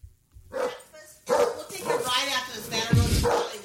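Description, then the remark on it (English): A dog barks inside its family's house, several sharp barks in quick bursts, while people talk over and around the barking. “They have a dog, and this was in their house.”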